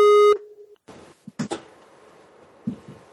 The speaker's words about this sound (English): What the heck? That's a big buzz. Who's that Skyping at our door?